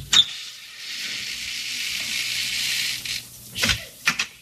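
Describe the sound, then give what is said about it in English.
The front door of the Van Schuler estate being opened: a sharp click at the start, a steady hiss underneath, then a short burst of rattling clunks and two quick knocks at the end. No one speaks. “Come on, we'll go in through the front door. I'll open it.”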